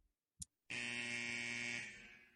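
A short click, then a loud, harsh electronic studio buzzer blares steadily for well over a second, rich and raspy, its button stuck, before trailing off slightly at the end. No one speaks.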